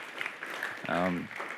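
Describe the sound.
An audience claps steadily in a dense patter of applause at a Sunday night gathering, showing appreciation for two singers, while a single voice briefly rises over the clapping near the middle.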